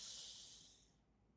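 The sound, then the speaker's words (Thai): A slow, airy breath drawn in through the nose during a breathing exercise, a soft steady hiss that tapers away after about a second, quiet, with no talking. “และเชิญทุกท่านครับลองนึกถึงสูตรการหายใจนี้เรียกว่า4 5 6 4คือหายใจเข้า4วิครับอ่ะหายใจเข้า4วิพร้อมกันครับ”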